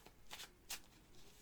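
Quiet riffling of a deck of 28 dark green game cards being shuffled, with a few short bursts of crisp flicking and no voices.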